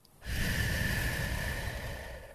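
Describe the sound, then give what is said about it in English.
A long, deep inhale through the nose during breath prayer practice, steady, with a breathy rushing texture that lasts about two seconds and tapers slightly at the end. “Inhale through your nose.”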